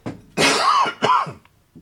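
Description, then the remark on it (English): Two harsh, raspy coughs close together, the first longer and rougher, ending in a brief throat-clearing rasp, loud with no talking. “Sorry, the cough is actually a hell of a lot better than it's been, by the way.”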